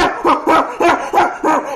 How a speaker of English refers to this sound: Oh, so we kept thinking, by the way, that Jax was barking at nothing sometimes because dogs are fucking crazy, right?